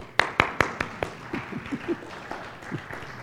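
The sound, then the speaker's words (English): A handful of sharp hand claps ring out in quick succession as an audience applauds a couple who had a baby a week ago, then quickly fade and thin out, leaving soft scattered murmurs and faint taps behind. “This would be a good time to give them applause.”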